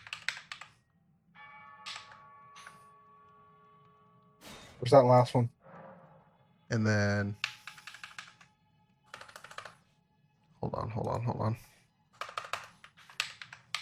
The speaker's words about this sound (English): It's your loud-ass fucking clunker keyboard.